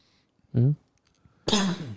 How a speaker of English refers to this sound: He's getting old over there. Oh, goodness. It's coughing.